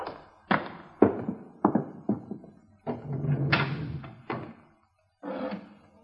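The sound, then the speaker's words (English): An elevator door opens with a series of heavy thunks and clattering bangs, followed by a rumbling mechanical rattle and a few more knocks; no voices are heard. “No, there's the elevator.”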